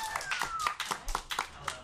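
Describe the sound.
A short, quiet round of applause for a player at the quiz box: sharp claps at a fairly steady, quick rhythm, roughly four per second, with faint voices and a thin whistling tone underneath.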